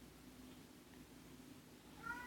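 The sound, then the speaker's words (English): A cat named Kitty meows once near the end, a short rising cry with clear harmonics, over a steady low hum and faint background noise. “Exactly, Kitty.”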